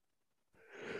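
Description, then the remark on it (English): A single drawn-out, breathy yawn, swelling in loudness after a moment of near silence and still building as it ends. No one speaks. “Actually, yawns. I'm sorry. I can't stop yawning.”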